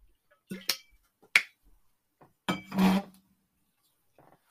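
Sipping and swallowing of water by someone with hiccups: a few short, sharp mouth clicks followed by a louder, slightly longer gulping burst, then quiet.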